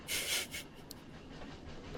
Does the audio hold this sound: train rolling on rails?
yes